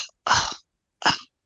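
Two harsh, dry coughs from dust in the throat on a windy day, the first longer and rougher, the second shorter, separated by a brief silence.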